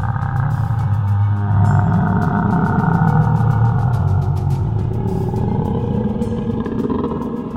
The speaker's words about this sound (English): And you watch as this mouth forms along the side, and once more, this bellowing roar echoes out.